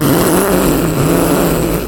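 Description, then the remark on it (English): A voice mimics a fart with a loud, buzzing raspberry held for about two seconds, steady, with no talking. “You're making a fart noise because it's a beans episode and beans make you fart.”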